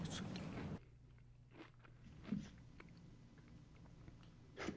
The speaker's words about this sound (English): I think you'd hear me eating chips while that clip was going on. Yeah, I like that. Yeah. It adds some ambiance. I'm working all day, people. I'm a little hungry for chips.